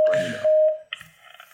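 A phone's electronic ringtone sounds as the owner's mother calls during a recording: a loud, steady tone holds for most of a second, then gives way to a brighter, chiming chord. No one speaks.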